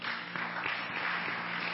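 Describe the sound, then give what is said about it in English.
An audience claps steadily for people as they come forward, a dense, even wash of many hands with a few sharper individual claps standing out, sustained at a constant loudness with no voices over it. “Oh, clap for them as they come.”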